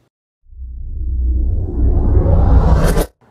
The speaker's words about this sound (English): That's probably an air conditioner.